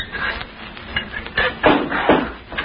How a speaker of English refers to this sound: Shall I close the trap door again? Yeah, might as well.